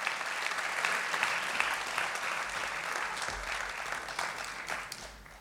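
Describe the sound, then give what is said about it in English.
Steady audience applause from a concert crowd at the Charles H. Morris Center in Trustees Garden during the 2019 Savannah Music Festival, as flatpicking guitarists Bryan Sutton and David Grier begin their set. A dense patter of many hands claps at an even level for several seconds before thinning slightly at the end. “They stopped clapping, David.”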